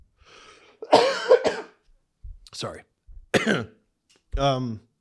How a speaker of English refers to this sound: I just had to cough.